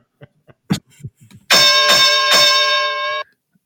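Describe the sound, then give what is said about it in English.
A loud ring bell clangs about three times in quick succession to open a wrestling segment, its bright metallic tone ringing for nearly two seconds before cutting off, after a few soft knocks and clicks. No one speaks. “So let's ring the bell on the opening segment here. Ringing the bell.”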